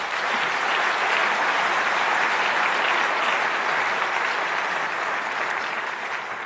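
An audience gives the speakers a round of applause, a dense wash of many hands clapping steadily at an even, loud level for several seconds with no voices breaking through.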